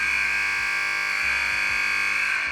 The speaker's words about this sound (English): Do the buzzer. Do the horrible buzzer.